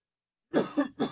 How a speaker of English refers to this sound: Got a cough. It's not the COVID. I apologize.